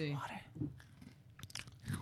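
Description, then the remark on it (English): Someone chews crunchy Oreo cookies, a few crisp, irregular crunches breaking through wet munching, after a short voiced murmur at the start. “These Oreo cookies are so good.”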